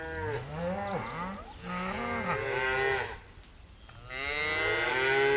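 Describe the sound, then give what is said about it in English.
Grazing livestock cattle in sagebrush country moo repeatedly in long, low, overlapping calls that rise and fall, several animals bellowing loudly with a brief lull before the lowing resumes. “Their mating and nesting grounds have been disturbed by oil and gas drilling, coal bed methane development, the conversion of sagebrush to agriculture, and especially by the grazing of livestock.”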